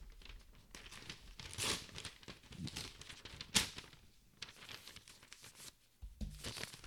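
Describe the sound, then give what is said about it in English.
Paper for writing down votes crinkles and crumples in a busy run of handling noises, with a sharp tearing burst partway through and quieter rustling folds around it. “Write them down and fold them up.”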